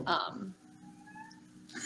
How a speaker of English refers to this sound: Kitten! Hello! Yeah, I know. So needy.